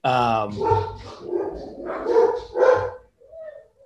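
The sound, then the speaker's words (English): A dog barks several times in quick, uneven succession, fairly loud, the barks tapering off into a brief, softer whimper at the end. “Love those dog interruptions.”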